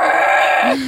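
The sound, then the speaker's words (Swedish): A person imitates a cow's moo, recreating the roaring heard during an attempt to turn her unborn baby: one loud, drawn-out lowing call held steady for nearly a second, then dropping in pitch as it trails off. It stands alone. “Så här romande kor.”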